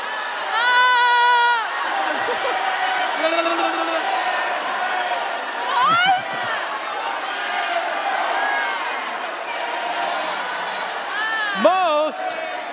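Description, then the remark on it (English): A confused assembly of people in a theater shouts and calls over one another in a continuous, chaotic din, some shouting one thing and some another, with occasional louder individual yells rising above the steady roar. “The assembly was in confusion. Some were shouting one thing and some another.”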